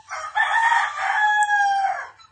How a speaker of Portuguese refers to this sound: O galinho gritando.